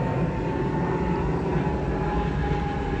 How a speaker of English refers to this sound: Planes have been flying really low.